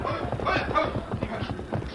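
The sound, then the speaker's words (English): A horse with a rider trots in, hooves clopping in a quick, steady rhythm, fairly loud, with a busy background murmur beneath the beats. “Hey, somebody's riding in.”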